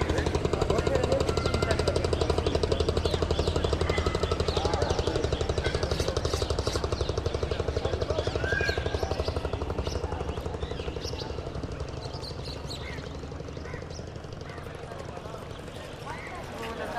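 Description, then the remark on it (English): A boat engine on the Ganges river chugs with a steady, rapid mechanical thumping, loud at first, then gradually fading as it moves away across the water, with faint background voices. “This boat going by, out on the Ganges.”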